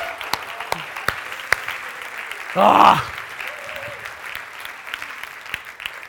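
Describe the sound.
An audience applauds throughout, a dense steady patter of many hands with a few sharper individual claps, broken midway by a short, loud vocal exclamation.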